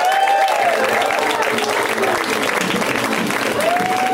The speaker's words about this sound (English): Coming next to the stage, this gentleman was a writer on a little-known show called The Simpsons, and he also has a show coming out on IFC in the fall called Stan Against Evil. A round of applause for Dana Gould.